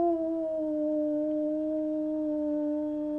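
A wolf howls in one long, unbroken note, loud and close, its pitch holding steady and sagging slightly over about three seconds, with no voices around it.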